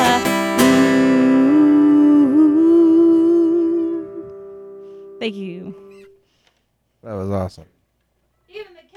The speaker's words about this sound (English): Even the cat was singing along there at the end. That was awesome.